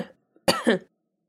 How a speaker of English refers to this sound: You can just cut that out, but I didn't want you guys to be talking. No worries. No, that's a good idea. I didn't just, like, make you stop to listen to me cough.